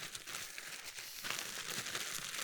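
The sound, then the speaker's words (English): A Ziploc bag with a marshmallow dropped inside being zipped closed, a steady rasping that grows slightly brighter and louder partway through, lasting a couple of seconds with no voices. “Zip this up.”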